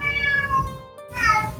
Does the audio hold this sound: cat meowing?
yes